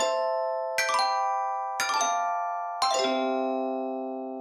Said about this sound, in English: But anyway, there is a proper chime to play in, of course, now, which is the Let's Start the Episode Properly chime.